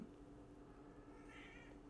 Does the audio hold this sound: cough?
no